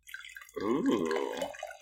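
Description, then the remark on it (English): Red wine pours steadily into wine glasses in an apartment, with a gurgling, ringing tone that shifts in pitch as they fill, after a brief quiet moment at the start. “And I'm pouring proper glasses this time.”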